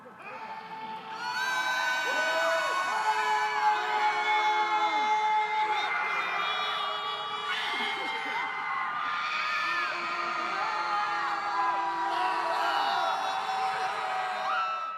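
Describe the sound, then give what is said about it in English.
A large crowd of students at Michigan State University screams and yells together at midnight during finals week, a sustained wall of shrieks and whoops that swells and persists for the whole stretch, loud with no clear speech. “That was last night's Midnight Scream, a common practice at MSU during finals, because finals can really take their toll.”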